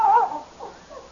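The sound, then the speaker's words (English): A dog whimpers in a high, wavering whine that starts fairly loud, then trails off into two softer, shorter whimpers. No one speaks. “Say, that's quite a dog you got.”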